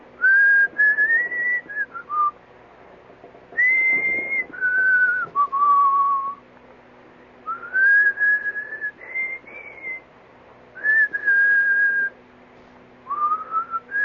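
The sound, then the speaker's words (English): A man whistles a melodic tune in clear, sustained phrases with short pauses between them, fairly loud, with a faint steady hum underneath and no talking. “That's what I was whistling.”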